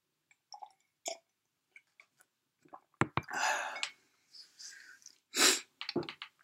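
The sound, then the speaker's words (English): A loud sneeze bursts out after a few seconds of small mouth clicks and sharp, breathy inhales building up to it, with no talking around it. “Because I knew I was going to sneeze.”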